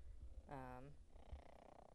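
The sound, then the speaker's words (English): A cat purrs, a steady low rumble running through the whole moment, broken briefly by a short, tonal, voice-like sound partway through. “He's just purring up a storm over here.”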